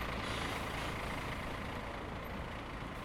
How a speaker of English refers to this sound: my attention shifted as a large bus, capable of crossing deep glacier rivers, drove up in front of me.